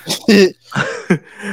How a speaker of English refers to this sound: No, I had to cough real quick.